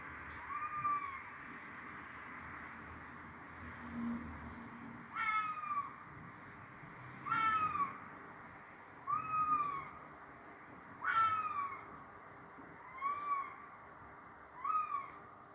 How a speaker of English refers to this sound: And secondly, this will be a noise that's familiar to most of us in the UK. Sound of a fox.